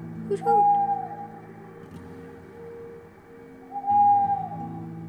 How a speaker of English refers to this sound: On the night of Halloween, Joe bravely walked into the graveyard, which was far more spooky than he expected. An owl was hooting.